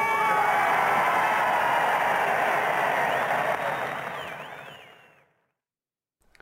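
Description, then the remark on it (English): A large crowd roars and cheers as Churchill speaks from a balcony, a dense, steady wall of noise, with a few shrill whistles near the end before the cheering fades away into silence. “I think it's sort of spine-tingling, and I love the way that the crowd are actually interacting with him.”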